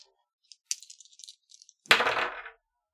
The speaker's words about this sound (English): Roll it with disadvantage. Okay. I'll put up my other dice for that.